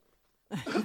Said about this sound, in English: Excuse me. As you're over there coughing motioning me to talk, because yeah.